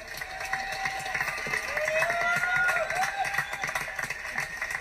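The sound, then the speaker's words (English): A crowd at a New England BMX event applauds and cheers steadily to welcome Linda Dorsey from California, dense clapping mixed with shouts and a few rising whistles, holding at a fairly even level throughout. “How about a round of applause and old-fashioned New England welcome for Linda Dorsey?”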